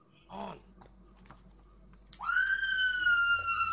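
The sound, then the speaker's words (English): A person lets out a loud, sustained high-pitched scream that starts abruptly and holds steady for over a second, after a brief, shorter cry and some quiet background noise. “I was going to say, somebody screaming.”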